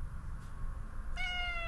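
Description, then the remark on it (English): A single drawn-out meow from a chunky cat being petted rises near the end, clear, over a steady low background rumble. Nobody speaks. “I have to pet this cat.”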